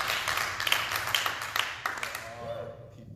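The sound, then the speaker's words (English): A packed-house audience claps hands together in a dense, steady patter of applause that holds for a couple of seconds, then thins out and fades, leaving a faint murmur underneath. “Hey, let's can we just maybe clap our hands to let people know there are people here.”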